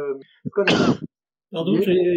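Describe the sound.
A single harsh, noisy cough bursts out, lasting under half a second, between stretches of someone speaking. A short pause follows before the talking resumes.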